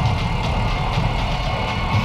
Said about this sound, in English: A truck just happened by.